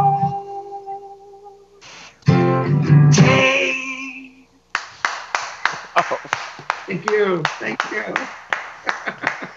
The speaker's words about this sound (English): Thank you. It's so nice to see people clap. I'm used to doing these live streams where it's just me and an empty wall. So thank you so much.